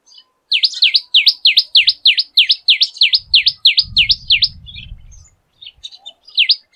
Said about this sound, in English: This is a very familiar call. I'm sure we all have seen the handiwork of the tailor bird's nest, at least in photographs.